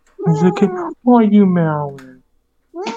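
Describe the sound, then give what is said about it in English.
A cat named Zora meows loudly: two long, drawn-out cries, the second sliding down in pitch, then a third cry begins after a short pause. “Are you meowing?”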